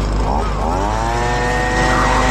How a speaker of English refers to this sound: Worker asks you to blow the dust off his clothes with a leaf blower.